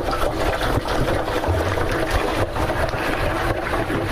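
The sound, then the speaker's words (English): A fryer basket is lowered very slowly into hot oil, setting off a loud, steady bubbling sizzle that crackles continuously for the whole stretch, with no one speaking. “And you do this very slowly because, as you can hear, that oil is bubbling.”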